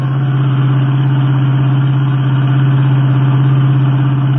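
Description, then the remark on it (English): A car engine drones steadily and loudly throughout, a low, continuous hum with a rhythmic throb, heard from a moving car on the road, growing louder as a wine-colored Royal Coupe passes. No one speaks. “And did you notice that it got louder just as that wine-colored Royal Coupe ahead passed us? Say, that's the car that was stolen from us.”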